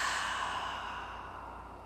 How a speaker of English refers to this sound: One more time. Inhale. Big breath out.